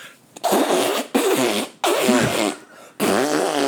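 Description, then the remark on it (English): A man makes fart noises with his mouth, four loud, buzzy, sputtering bursts in quick succession with brief pauses between, alone. “Where he's making the fart sounds.”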